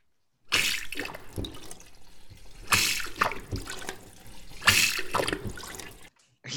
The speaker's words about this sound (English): We needed to hear the flushing sound.